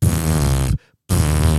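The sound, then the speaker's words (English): A voice imitates a baby blowing raspberries: two loud, buzzy, sputtering bursts, each about three quarters of a second, separated by a brief pause, alone. “Just fart noise. Yeah, raspberries all day.”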